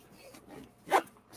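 A bag zipper pulled shut: a few soft scratchy rasps build into one sharp, loud zip near the end, then a faint final tug.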